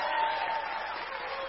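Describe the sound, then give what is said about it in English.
An audience cheers and claps in a steady, dense wash of noise that holds at an even, fairly loud level for the whole moment, with no single voice standing out. “That's worth cheering about.”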